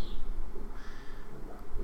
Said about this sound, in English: I love hearing all the birds chirping at your house. It's so nice. I know, it is pretty neat. It's very calming.